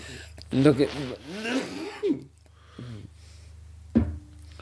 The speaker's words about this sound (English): It's all right. Clear the throat. It's fine. Absolutely fine.